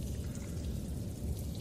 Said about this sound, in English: Okay. That's what's been playing this entire time. I know. It's been dripping cave. It's literally the loop that I've had running for this whole thing.